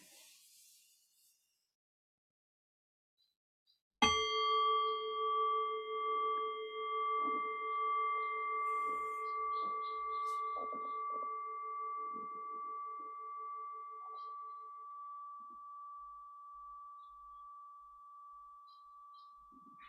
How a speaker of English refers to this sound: And so in the next breath or two, I'll ring the bell again. The invitation there is again to rest awareness on the fading bell. Allow the fading bell to guide your awareness into silence.